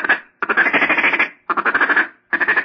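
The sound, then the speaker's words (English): A duck call blown for duck hunting in quick rasping bursts, four rapid runs of buzzy, nasal quacking pulses with short gaps between them, loud and without any talk. “And then you would just throw a little quack in there, like.”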